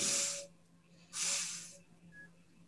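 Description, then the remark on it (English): Two long, breathy sniffs drawn in one after another with a short pause between, hissy and airy with no talking around them. “He takes another step forward and he sniffs.”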